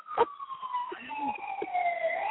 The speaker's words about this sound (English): I can hear it now. I can hear the siren.